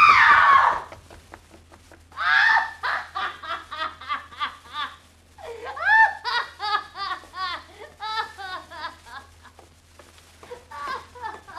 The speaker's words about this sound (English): She screamed. A trick. She's playing a trick. Like the Ripper was at her.